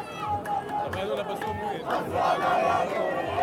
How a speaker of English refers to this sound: The first prisoners, young teenage boys, many of them detained for throwing stones or Molotov cocktails, arrived here in Ramallah long after dark, and this massive crowd erupted in cheers, carrying them on their shoulders.